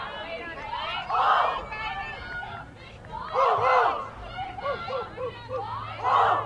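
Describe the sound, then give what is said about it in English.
Players in the Lady Warrior softball dugout cheer and chant in rhythmic bursts during an evening game, rising loudly about every two to three seconds with excited shouting and babble in between. “Lady Warrior dugout. Very vocal this evening.”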